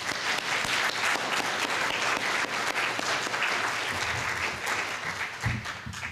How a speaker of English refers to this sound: let us all give a round of applause to General Watson and welcome him to Norfolk.